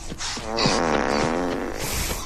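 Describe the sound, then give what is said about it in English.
A giant fart from a man riding a horse rips out as one long, loud, buzzy blast with a wavering, almost mooing pitch, sustained for about two seconds. No one speaks. “it was Jackie Mason riding around on a horse and a giant fart”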